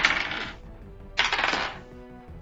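Dice rolled for initiative clatter across a hard surface in two separate rolls, each a bright, rattling burst lasting about half a second, with a short quiet gap between them and no voices.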